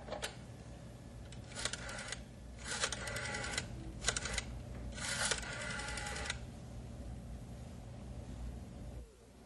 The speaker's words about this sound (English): Oh, this numbering machine's on the fritz. Can't seem to get the number I want.